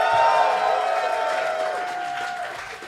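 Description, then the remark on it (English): A crowd applauds and cheers loudly and steadily, dense clapping mixed with high whoops and shouts, easing slightly toward the end. “So, please, when all the guests come on, make sure you give them a lovely round of applause as you just did.”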